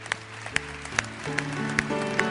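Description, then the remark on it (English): A worship service audience claps as a hand clap offering to God, in a steady, even rhythm over sustained keyboard or organ music, the claps landing about twice a second and fairly loud against a busy background. “Let's give God a hand clap offering.”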